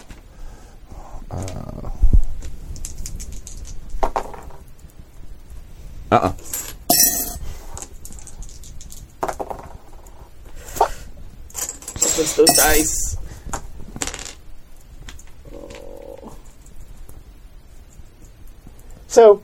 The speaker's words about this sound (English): Those dice. So, wait. Your two rounds. You've made two rolls.